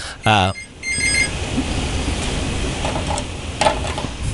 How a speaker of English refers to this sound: heard the bat phone ringing a little bit here in our plush Providence Journal studios